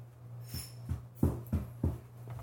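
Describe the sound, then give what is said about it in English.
A dog bumps against a couch, making five dull, muffled thumps in an uneven rhythm over a steady low indoor hum. Nobody speaks. “Dog's banging on the couch.”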